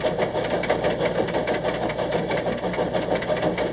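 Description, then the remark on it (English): A locomotive engine runs steadily, a dense mechanical rumble with quick, regular chugging pulses that hold an even loudness for the whole stretch, with no voices. “Locomotive Sounds and Sense of History”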